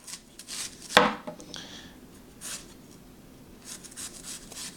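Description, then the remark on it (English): A knife cuts into a crisp apple with one sharp chop, followed by softer scraping and a few faint cutting sounds against a board, with no talking. “Let's test it up, chopping this apple.”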